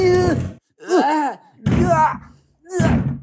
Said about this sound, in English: help me pick up this Boudreaux, take off all these deadlocks, pull out all these planks on the door, and open these seven doors.